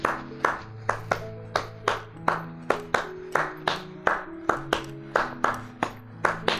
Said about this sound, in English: Sometimes it's just the clapping of the hands.